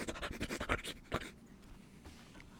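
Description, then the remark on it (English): A voice imitates dogs sniffing and rooting around the ground in the woods after catching a scent, a quick run of short, breathy nasal bursts that trail off into quiet after about a second and a half. “Eventually, Chelsea and Nathan caught up with them, found the dogs rooting around the ground, like...”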